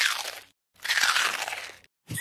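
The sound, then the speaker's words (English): Loud crunching on hard candy, coming in a few grinding bursts separated by brief silences, with no voices present. “Crunch, crunch in the worst possible moment of this fucking film.”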